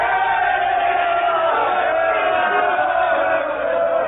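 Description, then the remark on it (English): A large crowd shouts and roars together in a continuous, loud wall of voices, with no individual words standing out and no pauses throughout. “What means this shouting?”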